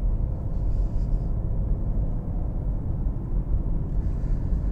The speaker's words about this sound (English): Holy man, Jesus. Got this guy in a truck who's in a really big rush.